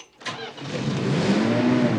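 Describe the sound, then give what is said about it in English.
The engine of an icy blue 1957 Ford Fairlane cranks briefly, catches, and settles into a loud, steady rumbling idle with a slight rise in pitch as it warms up, with no talking. “Gotta let him warm up a little. You hear that, Sam?”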